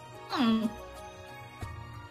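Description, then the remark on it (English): A person briefly imitates a cat's hiss, a short, voiced sound that sweeps downward and lasts about half a second, followed by quiet and a faint bump. “I give a little hiss and then run away.”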